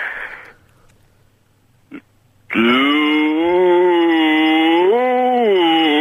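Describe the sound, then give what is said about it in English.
A person tries to say "no" as low as possible and produces a cow-like moo: one long, loud, droning tone that holds steady for a few seconds, lifts briefly in pitch near the end, and follows a short soft rustle and a click. “You're just saying moo.”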